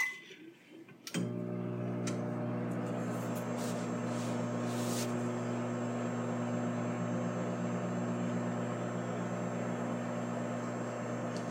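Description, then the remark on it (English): A microwave oven starts up after a brief quiet moment and runs for about seven seconds with a steady droning hum, accompanied by faint ticking and a few soft clicks early on, heating a hard lump of brown sugar to soften it. “I am deciding to microwave this slightly because this is going to take a long time.”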